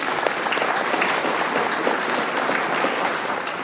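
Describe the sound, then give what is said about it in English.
An audience applauds the speaker steadily, a dense crackle of many hands clapping at an even, fairly loud level with no voices on top, sustained for a few seconds. “Let's have a round of applause again for our speaker, please.”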